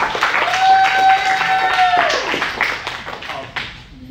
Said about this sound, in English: give him a hand clap as he comes up to the front.